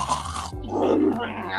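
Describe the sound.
A voice imitates a man's loud snoring: harsh, rasping low-pitched rumbles, one breathy snort giving way to a longer gravelly drawn-out snore, loud and continuous with no other talking.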